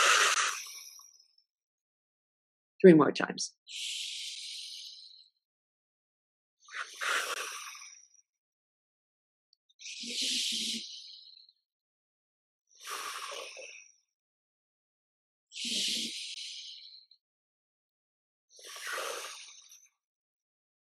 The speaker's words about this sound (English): So you breathe in through your nose. And you breathe out as if you're breathing out through a straw through your mouth.